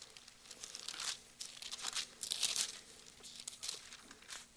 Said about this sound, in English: I like hearing pages turn. I think that's cool. I like it.